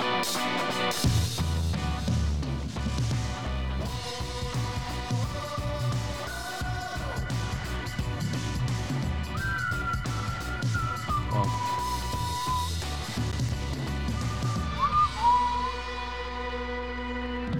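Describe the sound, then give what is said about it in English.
A full instrumental theme tune plays steadily for about eighteen seconds, with a bright melody gliding over a rhythmic backing. It is loud and wordless, ending with a held closing chord. “Makes me want to whistle that theme music.”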